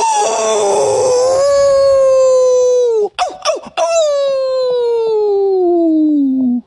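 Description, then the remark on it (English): A grown man in a closet howls like a wolf, one long loud wavering cry, briefly broken by a catch in the voice before sliding down and trailing off. “A grown-ass man howling in a closet.”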